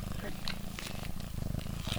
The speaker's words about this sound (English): snuggling her cat Oreo while we talk.